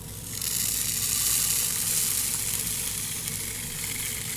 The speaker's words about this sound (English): Here, I'll set the atmosphere for you. Okay. It's a dark and raining night.